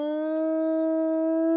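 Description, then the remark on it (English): A single long, eerie, bone-chilling howl holds one steady, mournful pitch, loud, with no talking over it, ringing without breaking as figures burst up from the sand of a desert dune. “When all of a sudden figures burst up from the sand, there's a bone-chilling howl.”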